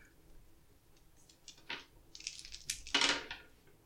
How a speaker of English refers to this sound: He's rolling a lot of dice. That's a bad sign.